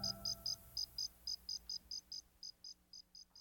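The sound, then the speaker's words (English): A toy cricket from a fast-food kids' meal chirps at the end of a song in a steady, rapid series of about fourteen short, high, bright pulses, clear over a faint low background hum with no talking. “the noise at the end is the cricket noise from a toy cricket from the Mulan Happy Meal”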